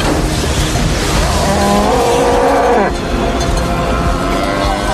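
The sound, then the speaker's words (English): A truck brakes hard as twin tornadoes cross the road in front of it, over a loud, steady roar of engine and wind; tires screech for about a second and a half, the squeal rising in pitch before cutting off abruptly. “So the twin tornadoes whip across the road in front of them, and Bill's got no choice but to slam on the brakes.”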